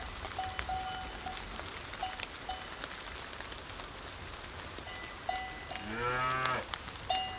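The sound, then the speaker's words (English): Steady rain hisses throughout over a foggy pasture, and near the end a single cow lets out a short, clear moo, louder than the rain. No one speaks. “The cows don't like the rain either.”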